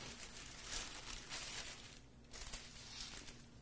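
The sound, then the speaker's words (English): Parchment paper crinkles and rustles in quiet, irregular bursts for a few seconds, a soft papery handling sound with no voices, as it is used while rolling out a pizza crust. “This is why you gotta love parchment paper.”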